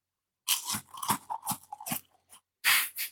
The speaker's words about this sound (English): This is a good snack, actually. They're a tasty sort of chocolate inside, but then also it's nice and crunchy. It's a good little biscuit